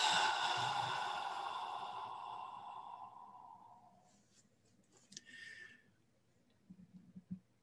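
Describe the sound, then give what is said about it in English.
A long, slow breath exhaled through the mouth during a counted breathing exercise of inhaling through the nose, holding, and exhaling, a soft airy rush that gradually fades over about four seconds, followed by a few faint clicks and rustles in near silence. “If you're not congested, if you can breathe through your nose and then out through your mouth, try that.”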